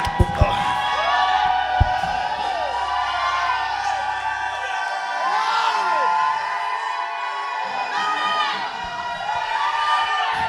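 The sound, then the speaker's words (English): A large crowd shouts and cheers together, giving praise to God, in a sustained, loud roar, many voices overlapping with whoops and high cries rising and falling across the whole stretch. “Some of you are shouting like you still believe the HR manager can do something to you, like you still believe the tax officer can do to you, like you still believe that the NNPC guy can do something to you.”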